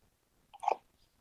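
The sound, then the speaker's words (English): A single quick, wet animal sneeze from an animal almost 18 years old, which quivers and sneezes slime as its chin is stroked. The sneeze is fairly quiet, with a short snort-like burst and nothing else around it. “You stroke Sam's chin. He quivers, sneezes slime.”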